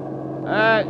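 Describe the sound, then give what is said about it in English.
A bus engine rumbles steadily as the bus approaches, with a loud, brief tonal burst rising over the drone midway before the engine noise settles back. “You in the bus! Stop, will you? Stop!”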